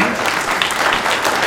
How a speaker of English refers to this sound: Applause isn't necessary. Maybe it's appropriate response.